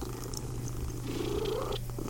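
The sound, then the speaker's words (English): A cat purrs steadily, a continuous low rumbling drone that holds for the whole two seconds with no talking. “Little fella, you're the cutest cat I've ever seen.”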